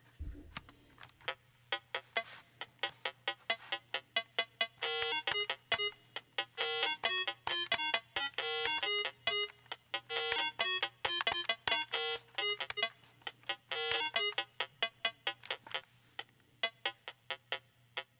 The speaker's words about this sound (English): Such was the case in 1978 when Mattel released the Bee Gees Rhythm Machine, a simple drum machine toy with four rhythm sounds and a monophonic keyboard. I own one of these, and here is what it sounds like.